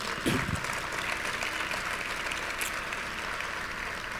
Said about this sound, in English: There is no way we're doing this event here if they're not our partners, so I think we should clap that up because this is gorgeous.